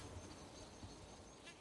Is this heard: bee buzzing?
yes